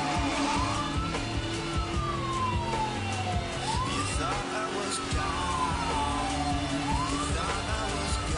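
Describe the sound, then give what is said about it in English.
A video game car drives with a steady engine drone, while loud rising and falling wails sweep through again and again, like sirens or squealing tires, with no talking. “I forgot this car does not handle.”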